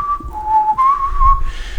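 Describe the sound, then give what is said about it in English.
Someone whistles a short melodic phrase of a song, a few sustained notes that slide up and down in pitch, over a low rumbling background. “And it's the song that with the whistling.”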